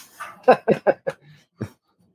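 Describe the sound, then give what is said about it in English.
Dogs bark in a quick burst of four sharp yips, then one more after a short pause, loud, as someone arrives home, with no talking and no clear jingle of keys. “got home and the dogs and keys are.”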